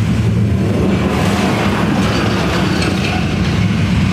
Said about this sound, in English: And actually, this alert that you heard led to this time we were able to mobilize. Picked up the sounds of some logging trucks.